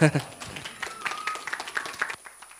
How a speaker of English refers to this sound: You can give him a round of applause, too.